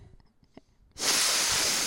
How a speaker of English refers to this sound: Excuse me while I have the sniffles.